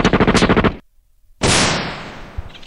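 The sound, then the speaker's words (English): Two gunfire sound effects: first a rapid automatic burst of about nine sharp shots, then a pause and a single loud blast that rings out and slowly fades. “They're the only two gunshot sounds I have”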